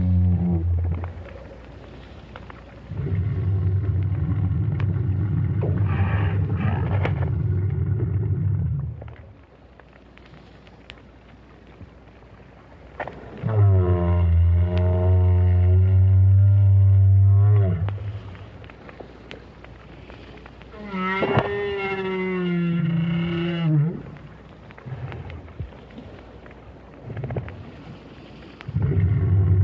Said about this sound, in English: But the renowned whale scientist was somewhat perplexed by the sounds made by this lone adult. Roger Payne recorded the whale with a hydrophone at the bottom of the sea near Peninsula Valdez in Argentina.